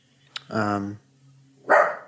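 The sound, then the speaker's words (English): A dog named Kermit barks twice, a longer, full-throated bark followed after a brief pause by a second, sharper one, both loud and clear against an otherwise quiet background. “Kermit, shut that nasty mouth.”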